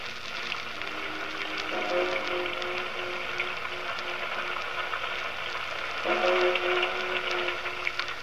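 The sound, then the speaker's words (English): Steady, dense rain hisses and patters throughout at 10 o'clock at night, while a low droning horn-like tone sounds twice over it, once near the start and again toward the end. “How long do we have to stand here in this confounded rain?”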